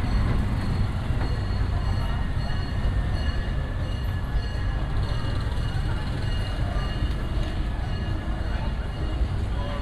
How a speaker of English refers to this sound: If you'll be leaving us here, just stay seated till we come to a full stop. Gather your belongings and step carefully from the train.